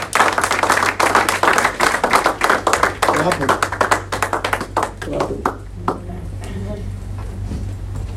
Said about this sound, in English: If you believe it, clap your hands and give God glory.